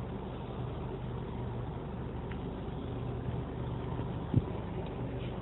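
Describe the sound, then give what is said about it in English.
A steady low rumble of a car driving in rush hour traffic, the engine and road noise droning evenly throughout, with one brief faint knock near the end and no one speaking. “I'm in rush hour traffic, and I gotta tell you, I love the back roads.”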